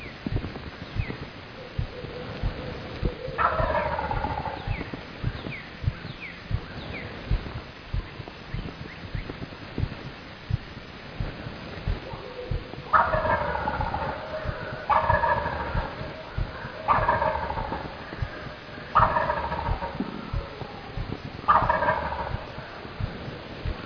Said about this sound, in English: That gobbler is pretty fired up. Finally, after looking for him for what seemed like 15 or 20 minutes, I saw a little bit of movement, and that turkey is roosted in a tree, low in a tree